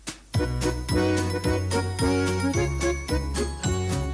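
An upbeat instrumental intro to an Aussie parody of Jingle Bells, with bright chiming, tinkling tones over a bouncing bass line in a steady, lively rhythm, played loud with no voices.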